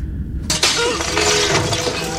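A pot is broken over someone's head with a sudden, loud crash, followed by nearly two seconds of clattering, ringing shards scattering and settling. No one speaks.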